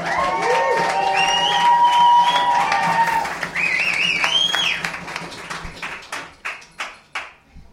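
A loud live-show audience claps, cheers and whistles together to welcome a guest, with shrill whistles rising above the roar before the noise thins out into a few scattered, fading claps.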